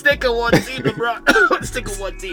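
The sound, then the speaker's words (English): A loud throat clearing, drawn out and exaggerated, with several voiced, rasping pushes over about two seconds. “Anyway, clear throat.”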